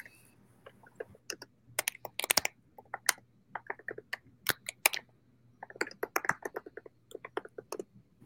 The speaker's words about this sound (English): are you feverishly typing away? I am.